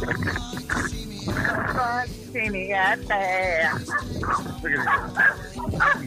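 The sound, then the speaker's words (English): Several dogs bark and yelp in a loud, overlapping flurry, with a few drawn-out, whining howls rising and falling in the middle. “He's got dogs going off over there.”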